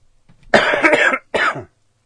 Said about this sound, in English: I like your cough. It's nice.